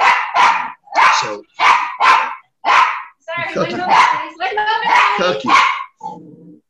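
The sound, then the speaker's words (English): A dog barks in a quick burst of about six sharp, loud barks in pairs, then keeps barking rapidly and excitedly, ending with a brief whimper. “Cookie, don't you know that I'm doing a Zoomy podcast thingy? Don't you know not to bark?”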